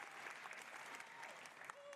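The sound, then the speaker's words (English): Steady applause from a conference audience of Ubisoft staff at the Ghost Recon Delta community program announcement, a dense crackle of many hands clapping at an even level, with a faint tonal whistle or voice-like tone near the end. “It's all Ubisoft people clapping.”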